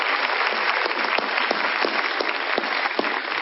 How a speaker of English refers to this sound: What a wonderful celebration. We wish to thank our multi-generational choir. Let's give God a hand of applause for this ministry here.